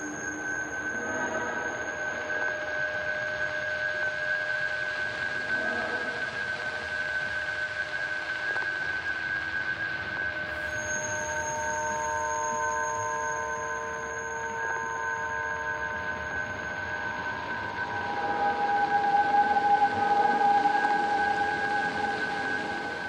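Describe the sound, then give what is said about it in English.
High-pitched underwater sonar: several steady, piercing tones hold and overlap for the whole stretch above a constant watery hiss, with pitches shifting slightly and a brighter ping surfacing near the end. “we have these like quite intense recordings of sonar. So that next section is sort of a little glimpse into that”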